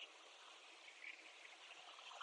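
A steady, hissing wash of ocean surf at night, with about 6-foot waves and many whitecaps breaking about 200 feet out and rolling into the shoreline, blending into a continuous roar. The level stays even and fairly soft throughout, and no one speaks.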